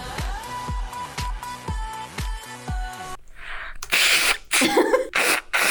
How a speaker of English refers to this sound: Wait, I need to blow my nose right now.